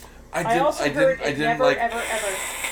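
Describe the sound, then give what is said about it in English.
A person makes a short voiced sound, then lets out a steady, breathy hiss for nearly a second, aimed at a cat that had accidentally opened the blinds. “You actually just hissed at my cat because it accidentally opened the blinds.”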